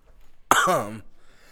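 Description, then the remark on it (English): A single loud throat-clearing cough, a short rough voiced burst lasting about half a second, followed by quiet room tone. “I was coughing.”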